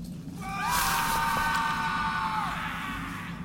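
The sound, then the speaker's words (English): A single scream used as a lure, high and drawn out for about two seconds, rising at the start and trailing off at the end, heard alone over a low background rumble. “It is a lure. That is the exact same scream I hear made last time.”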